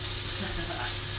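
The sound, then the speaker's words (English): Food sizzles in a pan with a steady, continuous crackling hiss that fills the whole brief moment, even in loudness. “Can you guys hear that sizzling?”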